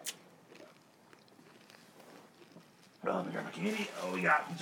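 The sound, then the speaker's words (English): Faint, irregular crunching and clicking of someone chewing gobstopper hard candy for a few seconds, then a voice starts talking loudly over it. “Am I supposed to chew gobstoppers?”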